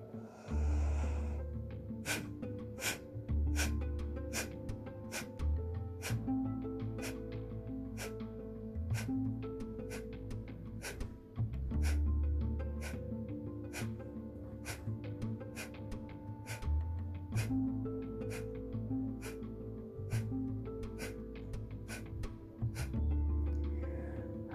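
Sharp, forceful exhales through the nose, each after a deep inhale and with the stomach tucked in, repeat steadily at about one per second, clear over a sustained, droning musical background, with no talking.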